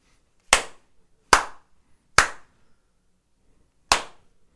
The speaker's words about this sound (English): What are you giving it? Snaps and slaps.